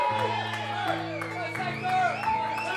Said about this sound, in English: give him a round of applause, everybody. Come on.